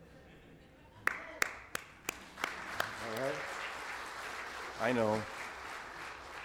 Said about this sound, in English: That one made me want to do a clap offering.